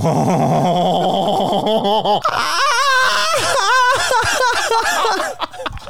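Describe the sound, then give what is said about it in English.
A person imitates a kookaburra call with loud, warbling, laugh-like whoops that start low and chuckling, then climb into rapid high-pitched cackling bursts for several seconds. “Who's better at making sounds? A French kookaburra.”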